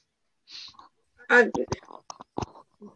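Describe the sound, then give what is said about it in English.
A few sharp typing clicks from a loud keyboard land irregularly, fairly loud, mixed in with a person talking. “Damn it, my loud keyboard.”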